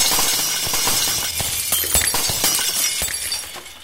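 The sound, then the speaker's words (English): Glass shatters loudly, followed by a continuous spray of tinkling, crunching shards with sharp broken impacts scattered over several seconds. No voices. “You both leave, and then you turn around and shatter the glass.”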